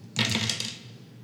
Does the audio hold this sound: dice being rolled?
yes